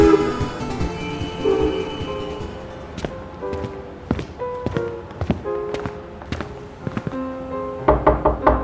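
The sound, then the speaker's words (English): A series of sharp knocks on a door, spaced irregularly over a few seconds, heard against a steady tonal hum and rumbling background with no one speaking. “There's a knock, and the butler opens the car.”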